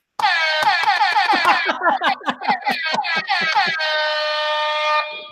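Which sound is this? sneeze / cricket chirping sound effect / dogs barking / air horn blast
air horn blast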